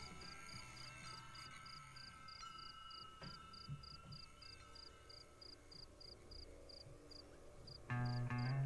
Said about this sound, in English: I guess they're connected. I just thought they let that cricket sound go the whole time.